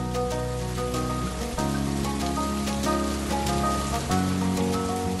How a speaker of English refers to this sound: And this year, the garden has been blessed with rain. So much rain.